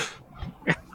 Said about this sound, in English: There's a lot of like ambient dog barking noise in the background, so apparently my gate's doing something because I don't think anyone heard that, but nope.